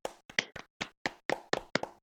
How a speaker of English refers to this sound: That's awesome. Wow. Yay. Clap, clap, clap.